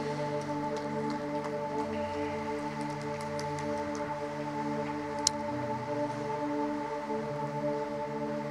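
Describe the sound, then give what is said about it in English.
Steady rain falls in a continuous, even hiss, with a few sharp drop-like ticks, while soft sustained keyboard chords hum underneath throughout. “And we are thankful for the rain.”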